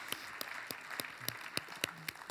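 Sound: audience applauding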